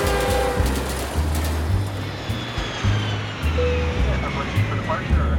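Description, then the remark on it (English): A steady, enveloping roar of an airplane cabin in flight to New York, a deep engine drone under constant airy hiss, with faint indistinct murmurs from passengers. “On the plane back to New York, I think again about looking out of a train window at Pittsburgh.”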